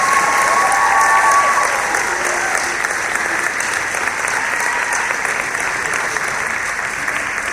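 An audience claps steadily and fairly loudly, a dense wash of many hands that holds for several seconds and eases off only slightly toward the end, with no voices.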